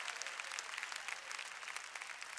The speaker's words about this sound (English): Why doesn't somebody clap your hands and give praise to God?